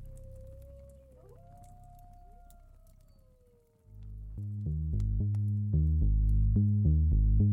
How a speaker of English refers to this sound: The howling we heard in the distance